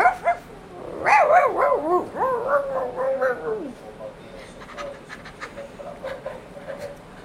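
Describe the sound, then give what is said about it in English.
A puppy lets out a run of high, wavering yips and whiny barks for a few seconds, then goes quieter with soft panting and light scuffling noises. “Puppy.”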